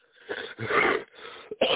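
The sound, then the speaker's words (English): A fit of harsh, raspy coughs, four or five wheezy bursts in quick succession, fairly loud and with no talking, ending on an abrupt forceful hack. “Man, I am sorry about coughing on you.”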